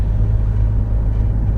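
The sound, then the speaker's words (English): A motorcycle engine rumbles steadily as it passes the speaker, a deep, continuous drone with no voices, holding an even loudness throughout the brief moment. “Oh, there's the motorcycle passing me now.”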